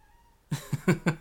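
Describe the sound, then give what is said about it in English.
A cat on a recording table vocalizes after a brief hush: four short, quick meow-like bursts in a rapid, uneven run, fairly loud and raspy. “The cat is now on the recording table.”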